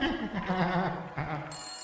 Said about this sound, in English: Oh, sounds like the bar phone's ringing. Let me go see who it is.